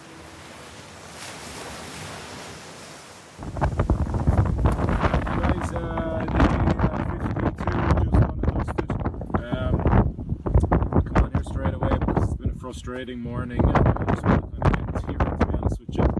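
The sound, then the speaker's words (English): Heavy wind buffeting an outdoor microphone during an ocean row, a broad rumbling roar that continues throughout, with a man speaking over it while big waves surge. “he's been able to tone down the wind. But brace yourself, because this was taken outside and it was windy.”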